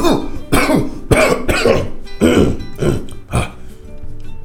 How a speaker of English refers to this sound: It was still stuck. I couldn't breathe. Still didn't panic. I just got up from the floor, living room floor, and began to give a heavier cough.